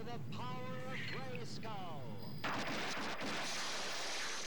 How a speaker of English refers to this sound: I always love this scene with Prince Adam, no time for a rope now, because I always say it's the transformation that actually drowns out the music. You listen to how loud the lightning is.